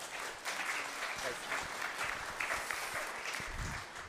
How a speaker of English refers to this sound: The polite way of doing it is not to tell jokes, but give him a round of applause when he comes.